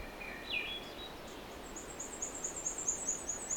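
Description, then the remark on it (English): An unseen warbler sings fairly close with a thin, high-pitched run of quick repeated notes, preceded by a short rising call, over a quiet outdoor background with no talking. “Up fairly close to this one now. I don't see it yet, but that's par of the course.”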